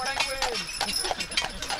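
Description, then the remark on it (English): Horse-drawn carriage hooves clip-clop in a steady, even rhythm on a hard surface during a battlefield tour at Gettysburg, moderately loud, with a light background hum. “You can even do a battlefield tour in a horse-drawn carriage.”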